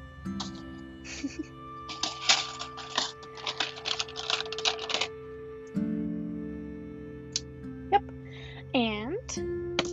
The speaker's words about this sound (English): Alright, and I'm gonna just cut some out with straight scissors, I might add.